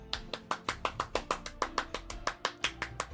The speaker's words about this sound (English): Let me Shia LaBeouf clap for you.